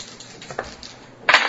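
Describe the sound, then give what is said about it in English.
Dice rattle softly with a few light clicks, then tumble onto a hard table in a loud, bright clatter near the end. No voices. “Spare your white dice.”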